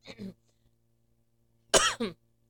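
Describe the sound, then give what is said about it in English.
Two bursts of coughing from a person recovering from the flu, a short one at the start and a louder, harsher double cough near the end, separated by near silence over a steady low hum. “Excuse me for all the coughing.”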